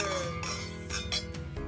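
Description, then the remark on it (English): Wine glasses clink together several times in a toast, each bright tap leaving a sustained ringing tone, fairly soft with no one speaking. “And on that note, make America grape again. Cheers.”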